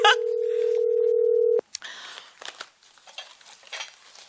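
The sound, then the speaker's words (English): A loud, steady telephone dial tone hums for about a second and a half while placing a regular phone call rather than a WhatsApp call, then cuts off abruptly, followed by scattered clicks and soft rustling handling noises. “Let's call him on the phone.”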